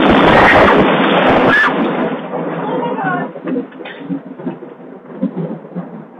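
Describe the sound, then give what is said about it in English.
A sudden, loud lightning strike hits a tall oak tree and crashes, rolling into rumbling thunder that fades over a few seconds, while voices talk over the dying rumble. “the lightning, then the thunder.”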